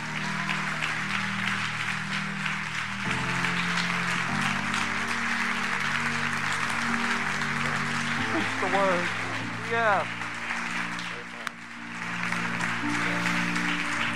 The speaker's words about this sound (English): Si le va a dar el aplauso a Jesús, lo tiene que hacer más fuerte. If you want to give a clap house to the Lord, clap hand to the Lord, give it to him right now.